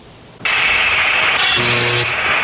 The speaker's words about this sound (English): That's it. That's it. This is the end of a human. Almost like a mosquito zapper.